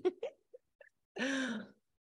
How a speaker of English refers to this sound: making me cough as well now. We're not even in the same room.